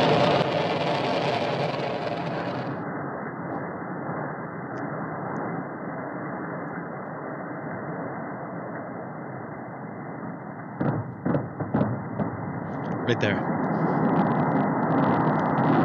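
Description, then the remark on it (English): Sonic booms from a rocket launch, with the volume turned up: a short cluster of sharp, thudding cracks that punches through a steady, broad roaring rumble, followed by a brief spoken remark. “You'll be able to hear the sonic booms.”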